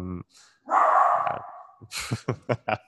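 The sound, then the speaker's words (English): A small, untrained poodle barks: one drawn-out, noisy yelp followed by a quick run of four or five sharp, rhythmic barks. “This dog is just, he's going to kill me.”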